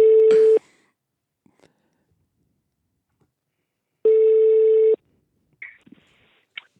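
Two loud, steady electronic telephone beeps as a call to someone in Paris, Europe, connects instead of ringing: a short one then a longer one about a second long, separated by silence, followed by faint scattered clicks and small noises.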